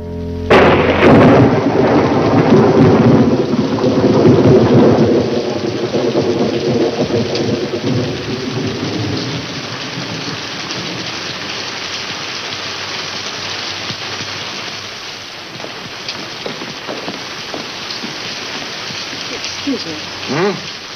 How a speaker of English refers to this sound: It's been raining hard, road slick, maybe a bridge or two out.